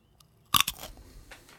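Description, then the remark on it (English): A sharp, loud crunch as teeth bite through a raw carrot, a quick double snap followed by a few softer crackling chews that fade out. “That was a carrot.”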